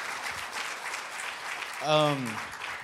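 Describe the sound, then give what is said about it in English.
A crowd claps steadily throughout for guests at a Bible sermon, a dense, continuous patter of applause, with a single voice briefly calling out over it near the end. “Give them all a round of applause.”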